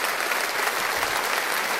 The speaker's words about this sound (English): Can you clap for that? We need to clap for that.